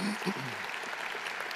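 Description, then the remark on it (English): Steady church audience applause for community pastors coming out on stage, a dense crackle of many hands clapping at an even level throughout, with a brief voice heard under it at the start. “Yeah, you're getting the applause right away and you haven't done anything.”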